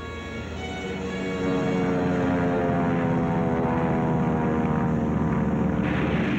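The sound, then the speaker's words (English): A steady, loud drone of propeller aircraft engines with layered humming harmonics, swelling in the first second and then holding constant, with no voices. “Our patrols have spotted an enemy search plane and are after her.”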